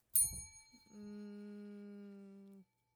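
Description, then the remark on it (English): A bright bell, rung by a player to answer during a game of naming sports, rings once with a sharp, shimmering strike, then a steady, lower humming tone holds for about a second and a half before stopping abruptly. No one speaks. “Why'd you ring the bell?”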